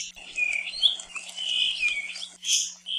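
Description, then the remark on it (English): A puaiohi, a rare, critically endangered small thrush found only on Kauaʻi, sings a thin, high-pitched song of sweeping whistles and trills, continuous for a few seconds at moderate volume, with a faint steady hum beneath and no voices. “The puaiohi is a small thrush that's found only on Kauaʻi.”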